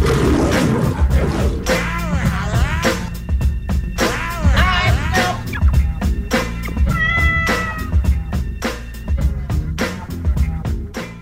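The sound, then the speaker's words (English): A loud, punchy intro jingle for the Lions' Den segment, with steady drum hits and a lion's roaring, snarling calls layered over it, running continuously without any talking. “All right, let's get to the Lions' Den before we get out of here. Hit it”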